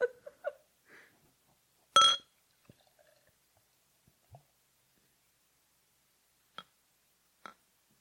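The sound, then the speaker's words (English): A drink is poured into a glass: a few light clinks, one brief loud splash of liquid, then quiet with scattered drips and two sharp glassy taps near the end. No voices. “Excellent pour sound.”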